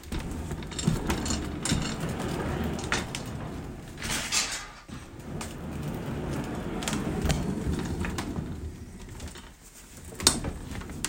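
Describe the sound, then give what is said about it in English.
The casters of a small, retro wooden office chair roll across a hard floor in a steady low rumble, broken by occasional clicks and creaks from the chair mechanism, with a brief sharp knock near the end. No one speaks. “You gonna listen to me roll around now.”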